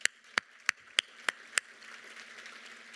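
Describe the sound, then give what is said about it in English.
A short burst of applause for graduating high school seniors in 2022: six crisp, evenly spaced handclaps in a steady rhythm over about a second and a half, then the clapping stops, leaving only a low background hum. “So I think that that is worth of a round of applause for our seniors.”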